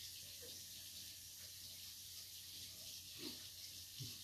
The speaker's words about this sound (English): Tap water. Best tasting shit in Torbay.